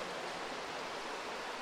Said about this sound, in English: You can hear behind me, there is a massive river running underneath in this cave. It's the same river or same stream we saw on the surface for the first time when we went through the bridge. It's the same water.